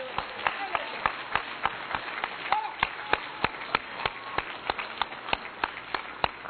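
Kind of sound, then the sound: crowd, audience hand clapping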